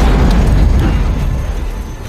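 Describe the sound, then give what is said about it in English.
A heavy, booming explosion from a plane crash in a film scene, its deep low rumble roaring steadily and loudly before slowly tapering off over a couple of seconds, with no voices. “Let's start with the plane crash.”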